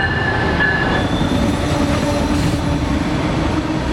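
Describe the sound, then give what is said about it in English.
An Amtrak Empire Builder passenger train rolls along the rails with a loud, steady rumble, broken by a faint high wheel squeal; nobody speaks. “Amtrak's Empire Builder first served customers in 1929 as the flagship train of the Great Northern Railway.”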